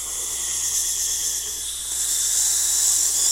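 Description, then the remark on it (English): A voice imitates slurping up spaghetti noodles: one long, breathy, hissing suck of air that runs steadily for about three seconds and swells slightly louder toward the end, with no talking. “Lay the noodles out, like, lengthwise, and you slurp it.”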